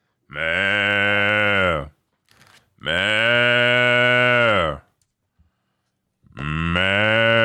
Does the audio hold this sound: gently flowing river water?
no